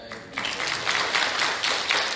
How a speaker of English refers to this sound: I do want to say before I forget, the men's choir, outstanding. Ladies, you have no idea how difficult that is for some men to get up here and sing like that. You should be applauding right now, by the way, ladies.